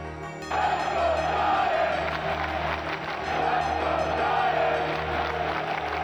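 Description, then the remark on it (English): A stadium crowd of New York Giants fans cheers in a loud, sustained roar that swells in after a brief quiet opening and holds steady to the end, with a low hum running underneath. “Yeah, not a lot of that Let's Go Giants cheering this season.”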